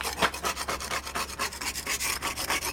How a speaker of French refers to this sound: Son bateau Mireia est au sec. Et on le trouve en train de gratter la quille.